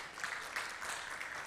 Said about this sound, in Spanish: ¿Por qué no les damos un aplauso?